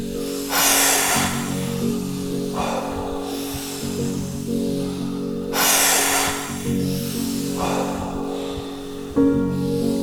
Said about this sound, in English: As we are starting the first round, take a full inhale.